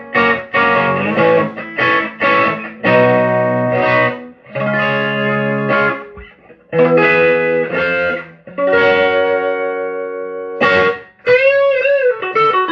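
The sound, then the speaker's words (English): Electric guitar played through a Vox tube amp with no reverb, a lively riff of strummed chords and sustained notes with slight crunch, ending in bending, wavering high notes; loud and alone, no talking. “This is just the Vox with no reverb.”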